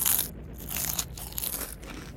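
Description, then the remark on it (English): A crisp, crackly crunch of teeth biting into hard taco shells that a character's feet have turned into, with bright brittle snaps and crumbling bursts repeating over about two seconds, moderately loud and with no talking. “Your taco feet are delicious.”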